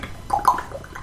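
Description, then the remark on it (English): A voice imitates gargling: a short, wet, bubbling gurgle with a couple of brighter rattling bursts in the middle, lasting about a second at moderate loudness. “They're just gargling their mouth.”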